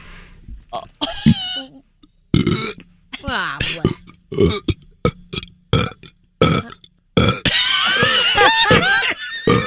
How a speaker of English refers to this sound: Another sound, according to this, we hate, the sound of burping. Here's … burping.